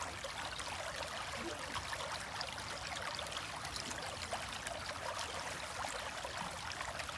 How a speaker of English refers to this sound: Sound of the water.